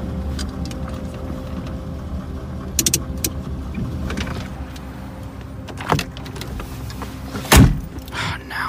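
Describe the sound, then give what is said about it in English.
A car engine hums steadily as the vehicle slows and pulls over in a warehouse district, with a few clicks and knocks, then a brief heavy thump near the end as it comes to a stop. “Pull over right there.”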